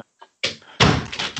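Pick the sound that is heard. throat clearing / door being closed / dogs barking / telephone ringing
door being closed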